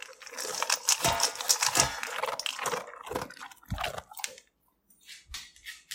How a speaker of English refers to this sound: And at that moment, my roommate's dog, Orion, was eating his food in the other room, and I was like, that's an interesting sound.